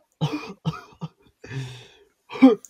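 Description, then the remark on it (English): A voice imitates the wheezy, mechanical-sounding cough of General Grievous, a part-alien, part-droid character: four short, raspy bursts in quick succession, fairly loud, with the final hack the strongest. “To make it sound like a cough.”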